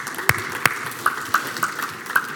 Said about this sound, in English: The next one is to clap your hands. Clap your hands, yeah.